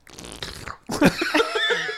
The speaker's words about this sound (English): I love that sound. That's that slurp. That was a queef. It sounded like queef.